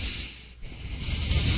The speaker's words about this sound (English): Here's my nose, the right side of my nose. Oh, no! My right nostril breathe. Here's my left nostril breathing